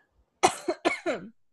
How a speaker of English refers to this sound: I have like this just lingering little cough.